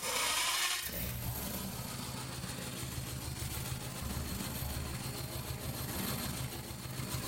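A boat engine cranks as the start button is pressed and extra gas is given with the throttle lever, churning with a steady, low, rumbling drone after a brief burst of hissing noise at the start. It is continuous, with no voices.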